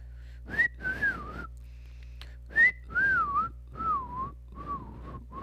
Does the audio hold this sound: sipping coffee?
no